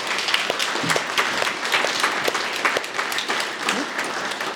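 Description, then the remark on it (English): Sustained applause from a sizeable audience applauding themselves before a question-and-answer session, dense overlapping claps at steady loudness throughout, with a few faint voices mixed in beneath the clapping. “So before we get into question and answers, just give yourselves a round of applause.”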